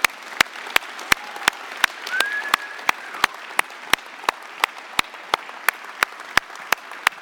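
An audience applauds for several seconds for standing people who work in business, such as accountants, engineers, real estate workers and small business owners: a soft wash of clapping under sharp, evenly spaced loud claps in a steady beat, with a brief high whistle partway through.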